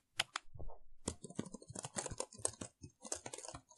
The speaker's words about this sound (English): What do you got? What do we got? Hit enter. Hold on. I'm still typing. Hit enter.